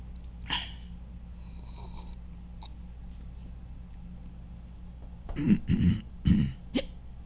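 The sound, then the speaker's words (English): Silence is broken by a short muffled sneeze, a couple of stifled bursts, followed by a brief sharp click; otherwise only faint background hum. “Bless you.”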